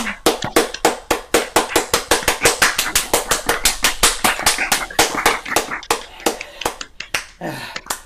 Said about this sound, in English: That was life-changing. Wait, slow clap. Thank you.